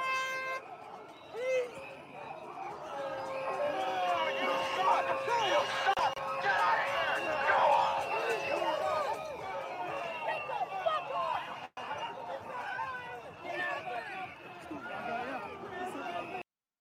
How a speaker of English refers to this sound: But just to repeat, you hear voices, all male, screaming at her, get out of here, go home, fuck you. All male.